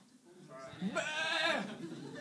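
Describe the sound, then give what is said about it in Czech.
A person mimics a sheep with a single wavering, nasal bleat lasting about a second, loud, with a brief lead-in before it, showing what a sheep does when attacked. “Představte si, že na vás někdo zaútočí. Co uděláte jako ovce?”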